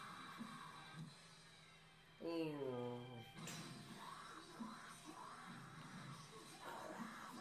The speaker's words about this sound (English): Oh, look, he screamed for 2 seconds.